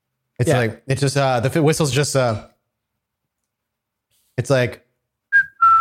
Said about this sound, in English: So right now I was just seeing fireworks and I can hear a faint whistling in the distance.